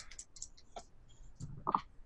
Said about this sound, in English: Oh, I dropped the bloody dice on the floor. On the lap.